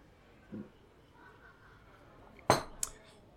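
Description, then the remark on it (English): Glasses clink together in a toast: one bright clink followed a moment later by a lighter second tap, over a quiet room with faint background murmur. “Cheers to that.”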